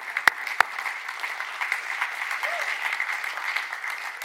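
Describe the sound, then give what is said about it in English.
An audience claps steadily, a dense patter of many hands, opening with two sharp, louder claps before settling into an even, sustained round of applause. “That's worth a clap.”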